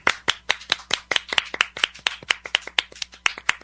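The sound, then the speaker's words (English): Steady, crisp clapping at an even rhythm of about four claps per second, carried on for several seconds with no voices over it, a clap for Joe Montana. “Okay, he deserves a clap section for that.”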